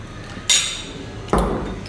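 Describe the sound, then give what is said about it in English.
Two sharp clinks of glasses touching in a toast, spaced under a second apart, the first bright and briefly ringing, the second duller and heavier, with no talking. “So cheers. Cheers. Cheers.”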